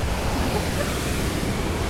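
nature, roaring waterfall

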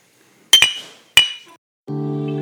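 household object, glasses clinking

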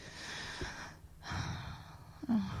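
human body sound, person yawning

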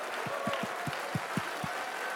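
crowd, scattered audience clapping

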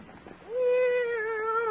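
animal, cat meowing

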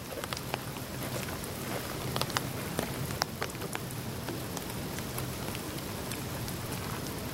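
nature, rain falling outdoors

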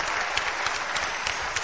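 crowd, audience applauding

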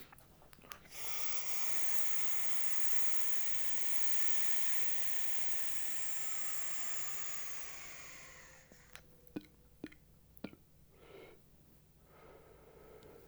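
taking a hit

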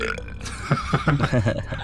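human body sound, belch

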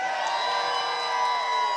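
crowd, church audience cheering

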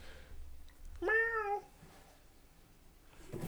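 animal, cat meowing

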